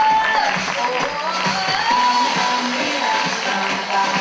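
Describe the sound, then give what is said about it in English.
Steady audience applause for Passional Designs' leather bride and groom outfits as they walk the runway, with dense, continuous clapping and a murmur of crowd voices, holding at a fairly loud, even level for about four seconds. “A round of applause for Passional, please.”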